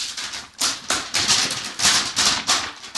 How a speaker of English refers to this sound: Great, I'm glad someone was clapping the script together.